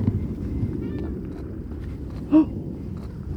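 An osprey gives one short, sharp call partway through, fairly close, over steady low rumbling wind noise; a faint thin whistle sounds earlier.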